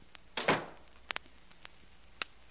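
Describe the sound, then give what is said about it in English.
A back door opens and shuts: a soft whooshing thump followed by several sharp, separate latch clicks, with no one talking. “And so I'm blowing out of here through this back door.”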